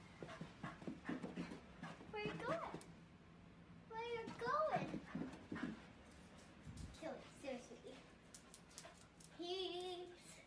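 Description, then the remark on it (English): A dog pants steadily, breaking into several high, wavering whimpers and whines between breaths over about ten seconds. “These dogs are like, holy, what just happened?”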